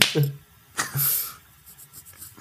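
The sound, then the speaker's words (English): A few quick, sharp knuckle cracks, two or three brittle pops spread over a couple of seconds, with a short low vocal murmur alongside the first and second pops. “Also, that was your knuckles.”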